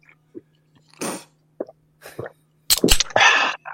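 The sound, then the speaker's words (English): A cold aluminum can of Liquid Death sparkling water is cracked open by someone who is driving: a few scattered clicks, then a sharp crack and a loud, brief hiss of fizz, with a steady low hum underneath. “But before we do that, as I'm driving, I just cracked a nice cold one.”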